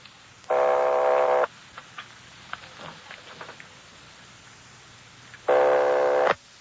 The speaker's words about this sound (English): Keep ringing, 761. They're ringing the number, Sergeant.